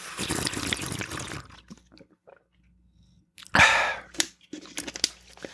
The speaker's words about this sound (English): It's funny, I'm actually drinking a bottle of water while I do this podcast. Here, let's do some more ASMR or whatever.